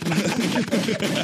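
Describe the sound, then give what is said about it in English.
A loud, dense burst of rapid gunfire sound effects, sharp cracks repeating in quick succession over a continuous noisy background, with no talking. “Give me some gunshots, damn it.”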